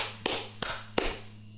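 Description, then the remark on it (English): Three sharp hand claps, evenly spaced about a third of a second apart, crack out over a low, steady electrical hum, made as a sync marker for editing a recording. No one speaks. “And I'll clap it back in.”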